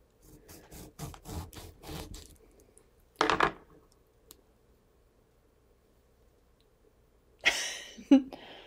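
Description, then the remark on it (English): A knife slices a wedge from a lime for a Kahlua and Coke drink: a run of short rasping strokes, then a single harder cut, a long quiet pause, and a final scraping slice against the board. “I'm just going to cheat and just take a little wedge out of it.”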